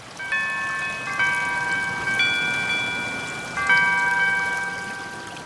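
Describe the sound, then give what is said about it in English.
A Google Pixel phone alarm tone plays on its own: bright, high-pitched chiming notes struck in a few short melodic phrases, each note ringing on and blending into the next at a steady, moderate volume. “And alarms.”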